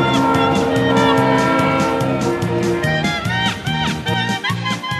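A train travelling from Riga to Warsaw rolls steadily along the rails with a rhythmic low clatter of wheels, while a sustained, multi-toned horn sounds loudly and continuously throughout.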